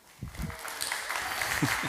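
An audience claps steadily for a couple of seconds for a student volunteer working camera one in the back, a dense wash of many hands rising quickly and holding, with a few low voices mixed in beneath the applause.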